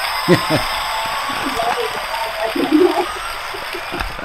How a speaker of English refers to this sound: And the crowd goes wild.